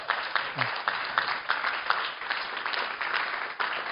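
Steady audience applause: dense, overlapping clapping at an even, fairly loud level for the full four seconds, with a brief faint voice underneath near the start.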